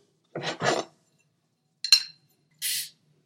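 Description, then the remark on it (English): Glasses clink together in a toast to a good interview, a few short, bright knocks spread over a couple of seconds, with one ringing chime in the middle and quiet gaps between, no talking. “Cheers. Cheers, sir. Absolutely. To a good interview.”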